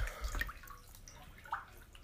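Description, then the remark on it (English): Quiet water splashing in a bathtub as someone leans up: a few irregular sloshes and drips, soft, with a slightly louder splash near the end and no voices. “Maybe you heard it splish splash and then it said something about the recording not working.”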